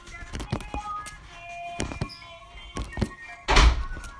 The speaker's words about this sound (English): So I was able to unbox it and remove it from the waterproof casing, and I don't have a micro SD card, so I'm gonna have to go get a micro SD card.